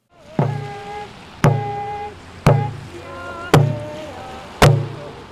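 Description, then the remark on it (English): Demonstrators, about 60 of them, marching around the Sitka courthouse in Alaska in pouring rain beat a drum: five loud, evenly spaced drumbeats, about one per second, each ringing briefly, over a constant hiss of rain. No one speaks. “Some participants drum and sing, while others hold signs”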